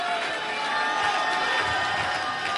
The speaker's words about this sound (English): Can you clap your hands unto the Lord? And let a shout ring out across this building.